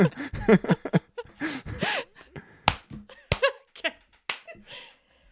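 A scattered series of sharp, loud hand claps at uneven intervals, mixed with bursts of wordless vocal sounds and laughter-like voices between and over them.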